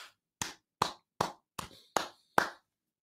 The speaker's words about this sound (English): Clappity clap for you. Clappity clap for you.